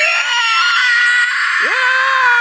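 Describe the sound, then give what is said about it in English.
A loud, raspy inhaled scream in the style of metal vocals, held continuously for a couple of seconds with a gritty, strained texture and a brief pitch dip near the end. “Well, actually, you're inhaling when you do a scream like that, so it's like...”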